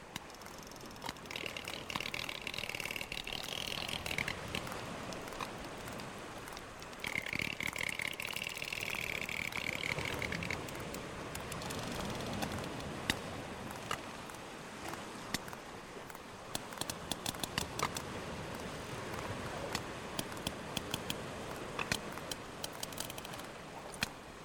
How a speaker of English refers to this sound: A little sperm whale clicks for you to get you in the mood for Thoughtful Thursday.